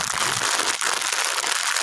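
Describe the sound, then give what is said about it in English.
A plastic bag of hospital slipper socks rustles and crinkles steadily for under two seconds, a bright, hissy crackle with a brief pause partway through. No one speaks. “They're hospital socks. They're slipper hospital socks.”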